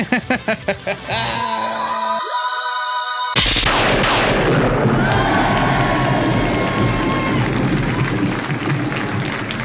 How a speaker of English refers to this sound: Crack-room! That is your ludicrous speed round, and crack-room is the sound of Excalibur smashing through unbreakable polycarbonate, as seen in last week's issue of Captain Britain and the Mighty Defenders.